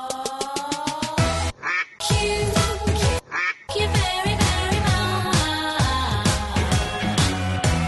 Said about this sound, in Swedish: Ska vi... Vi hade en kvack ju, va,